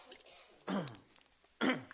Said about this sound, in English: Let me get a drink of this water to clear my throat.